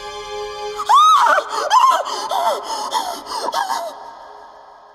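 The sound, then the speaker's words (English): A woman with her hands pressed to her mouth lets out a sudden, piercing scream, then a run of shorter, shaky cries and gasps, loud, for about three seconds before trailing off into quiet. “But when she reached the stairs, she stopped short, her hands pressed to her mouth. And then she started to scream.”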